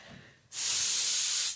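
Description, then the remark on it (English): A single sharp, sustained, loud hiss from a cat, lasting about a second before cutting off, with no voices around it. “Stop it, cats! I swear they're as bad as kids.”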